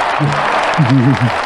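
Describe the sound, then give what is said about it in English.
A recorded applause track of steady, dense clapping runs through the whole clip at an even level, played as two guests from Wolfman Luggage and RideThatMonkey.com are welcomed, while a voice makes wavering, sung-sounding tones over it. “You guys get mad applaud track.”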